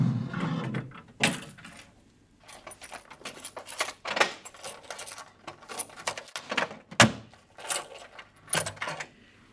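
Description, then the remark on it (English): The hinged wooden fall-front (abattant) of a desk, a piece of furniture with gilt bronze handles in the Riesner style, thumps shut, followed by a series of sharp metallic clicks and jingles as a key is worked in its lock, with short pauses between movements. “Maybe we better put the beautiful piece of furniture back, close up the abattant and lock it up.”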